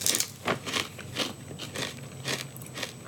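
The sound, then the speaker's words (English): Someone bites into a crunchy pork rind and chews, producing a quick series of sharp, crackly crunches at an uneven rhythm, moderately loud, with no talking. “That's like a tiny ass bite.”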